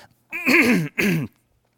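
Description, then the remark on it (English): A person clears their throat twice, a longer rough, voiced rasp followed by a shorter one, with a cough-like edge and no talking around it, while delivering a church message. “I'm starting to get coughed up here.”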